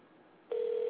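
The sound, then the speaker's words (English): A telephone line ringing on a call placed live on the air: after a moment of faint line hiss, a steady electronic ring tone starts abruptly and holds loud and even until the end, with no one speaking. “Still ringing.”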